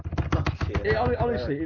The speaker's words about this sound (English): What are you doing? What? Are you like hammering away at a keyboard or something? No, my monitor on my keyboard, my screen on my keyboard keeps going, the wire thing's loose, so I have to keep pressing it